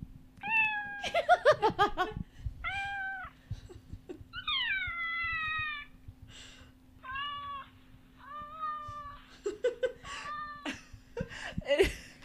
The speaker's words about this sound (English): Obviously, it's a cat meowing, but so many of them sound like the cat's in a lot of distress and pain.